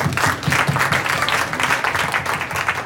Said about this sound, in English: I wrote a bill, the Veterans in Crisis Care Act, for suicidal veterans. And a round of applause on that.